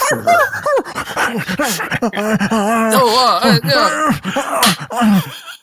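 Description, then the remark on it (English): A dog, Ruffles, yelps and moans after being slapped, in a long, loud string of wavering whimpers and howling cries that rise and fall in pitch for several seconds. “He killed that dog with a slap.”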